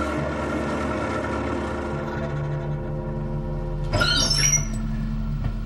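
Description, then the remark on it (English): An old, small motor coach, the bus for Innsmouth, rattles down State Street: its engine drones steadily with a deep rumble and layered humming tones, then a brief burst of high squealing, like worn brakes or gears, rises near the end. No one speaks. “In a few moments, a small motor coach of extreme decrepitude rattled down State Street.”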